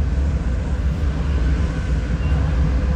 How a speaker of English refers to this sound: Oh, wow, I can hear that kind of echoey, rushing sound of the train going right through the tunnels. In total, the line goes through mountains 427 times.